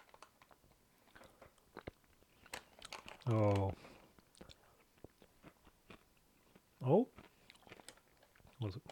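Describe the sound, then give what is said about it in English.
Wet chewing with soft crunchy bites of chocolate Shreddies cereal in milk, steady, interrupted by two short vocal exclamations from a person. “was a crunchy bit there in the chocolate, but I think that was more, it just didn't get covered in milk.”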